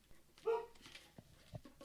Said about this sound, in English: Because I'm only partway into this, so get that drum, drum, drum of that barking out of my ears.